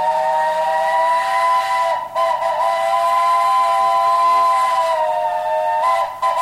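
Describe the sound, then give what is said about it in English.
A steam train whistle sounds loud in a long sustained blast, briefly dipping around two seconds and again near the end, with a hissing edge throughout and no voices. “The railroad brought unprecedented numbers of vacationers to the region, as well as land-hungry developers eager to build houses and hotels to accommodate them.”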